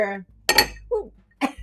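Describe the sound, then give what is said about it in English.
Glasses clink together twice in a toast, fairly loud, each strike ringing briefly, with short bits of voice before and between the clinks. “Happy cheers October. One more time.”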